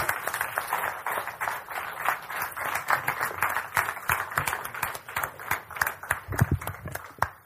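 An audience applauds steadily, a dense wash of many hands clapping at once with sharper individual claps standing out, holding at a moderate level throughout without any voices.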